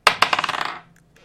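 A small glass d20 die clatters across a hard surface: two sharp impacts, then a quick series of smaller bright clicks that tighten and fade as it settles, followed by faint handling noise.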